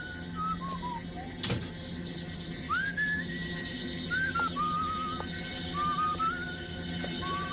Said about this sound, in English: So you can hear him, … whistling. He's just coming through the door. He suspects the ninja's there, though.